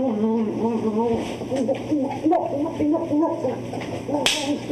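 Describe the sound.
A single sharp, loud slap on the buttocks cracks out near the end, landing over a steady stream of voices talking and chattering throughout.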